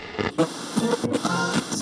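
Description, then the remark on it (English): Music from a car radio crackles and breaks up under bursts of hissing static while driving at night on old rural roads through farmland, the tune fading in and out in short, uneven stretches at a moderate level. “My music was interrupted by static, as though someone had ripped the antenna right off my car.”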